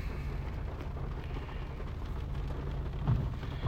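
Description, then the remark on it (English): Steady, dense rain hisses continuously on a rainy day with a deep low rumble underneath, like thunder rolling in the background; no one speaks. “Well, anyways, yeah, so today is a rainy day”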